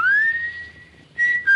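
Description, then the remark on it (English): A man whistles a short signal: a rising note held steady, a brief pause, then two more clear, sharp whistled notes, loud with no talking. “When he used to roll to the bottom of the hill and wait for you, and you could stand in the orchard until you heard him whistle.”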